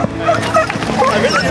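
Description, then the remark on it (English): A dog lets out a quick series of high, squeaky yips and short barks, fairly loud, over a busy background with some faint voices, at a volunteer-organised community running event. “It is me and the dog. This is Angus. He's my training partner.”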